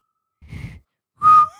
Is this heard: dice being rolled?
no